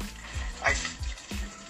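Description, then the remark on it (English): Wet sloshing and dabbing of real hot water as a little piece of bread is soaked and sponged, with soft, irregular squelches and a few dull low thumps, moderately quiet. “So I got real hot water. And I really sponged it up.”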